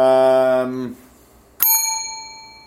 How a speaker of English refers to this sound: Wow, you happen to have a bell there. Right. That's been sitting there for 3 months just waiting for that.